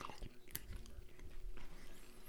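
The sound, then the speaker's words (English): Biting and tearing of paper-thin, fibrous sliced food, with a sharp crisp snap near the start followed by soft, wet chewing and tearing sounds, no talking. “Man, that fibrous tear.”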